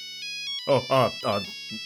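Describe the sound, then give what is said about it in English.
A cell phone ringtone for an incoming call plays steady electronic tones through the whole moment, while a voice speaks over it in short bursts. “cell phone rings”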